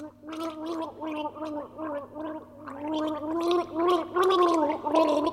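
Someone gargles a swig of water as a tune for others to guess in a game, a wavering, bubbly vocal tone that pulses unevenly for about five seconds and swells louder toward the end.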